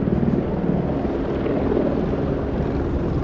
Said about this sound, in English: There's at least 1, 2, 3, 4 helicopters above. They are close. You know, I think in this day and age, they'd send in drones. Okay, there's 1, 2, 3, 4. Those are hovering, but there's another one that was zipping around.